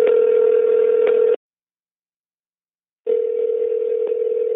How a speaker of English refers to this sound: So let me get my phone and give her a call.